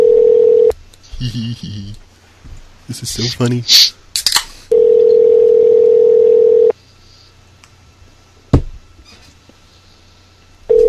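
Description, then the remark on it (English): A phone line rings back with a steady, buzzy tone lasting about two seconds, returning once more after a stretch of people talking and laughing, then a quiet line and a sharp click. “It's ringing.”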